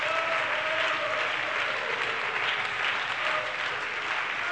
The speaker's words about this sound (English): Hallelujah. Hallelujah. Everybody give the Lord a hand clap of praise right now.